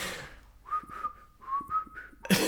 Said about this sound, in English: Suddenly, I can't whistle.